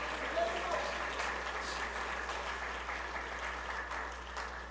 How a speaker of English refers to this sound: God is able. Somebody shout, God is able. Clap your hands and shout, God is able.